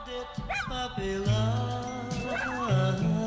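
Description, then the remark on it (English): A puppy yips and whimpers in high, whiny cries with a few short barks, fairly loud, filling a few seconds with no one talking. “Today is National Puppy Day.”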